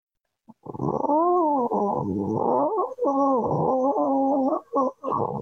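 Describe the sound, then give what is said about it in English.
A person's voice imitates a cat, making a warbling, rumbling growl that slides into a purr-like drone. It is fairly loud, running for about five seconds with a couple of short breaks. “It does sound like a cat.”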